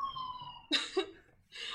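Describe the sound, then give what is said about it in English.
An emergency siren wails steadily in the background outside a house, then a sharp cough cuts in, followed by a second cough-like burst as the siren tone fades under it. “and that's what those sirens are.”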